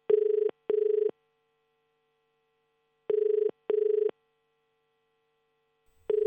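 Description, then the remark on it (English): A telephone rings in the classic double-burst pattern, two short trills then a pause, repeating three times, clear with nothing else audible. “Beth was going to call Colin after she found out what had happened, and we joined Beth and Colin to hear how this phone conversation went.”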